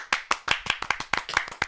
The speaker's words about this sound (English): Round of applause for me. Can I get a round of applause, please?